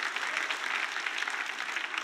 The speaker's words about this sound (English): Come on, once again, let's give her a good clap offering. Amen.